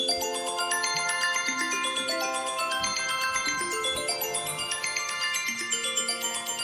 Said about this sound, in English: There you go, ringtones sound about the same.